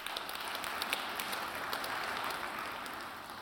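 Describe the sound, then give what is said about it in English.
An audience claps together as a clap offering to the Lord in a steady, dense wash of applause that holds at an even level for a few seconds, with no voices standing out. “Give the Lord a clap offering for that.”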